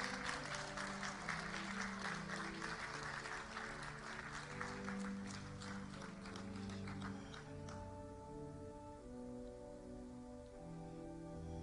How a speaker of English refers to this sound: Let's give our undergraduates a round of applause.